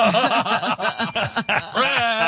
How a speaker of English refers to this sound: when you ring the bell